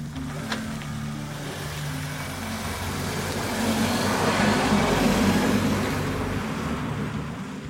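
A six-cylinder, four-wheel-drive car engine runs steadily with a low, droning hum that swells a little louder midway through before settling, with no voices.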